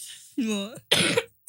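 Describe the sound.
A person coughs up close: a voiced, throaty hack followed by two harsh, breathy coughs in quick succession, with short pauses between them.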